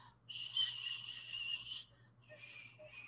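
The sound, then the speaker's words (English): A breathy, hissing attempt at whistling that produces mostly rushing air and only faint flickers of tone, one long blow followed by a couple of shorter, weaker puffs. “I can't whistle.”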